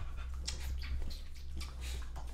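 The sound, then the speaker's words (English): A dog pants and licks right up against the microphone, a quick run of wet, breathy bursts and slurps over a low steady hum, with no one talking. “Me and your dog just made out.”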